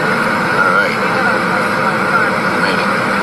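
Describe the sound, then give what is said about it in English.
Airplane engines roar loudly and steadily as the plane brakes on the runway, a dense, continuous rush of noise heard from inside the cabin, with faint muffled voices underneath. “Yeah, we're braking hard now. That's the way planes stop on a runway. They brake hard.”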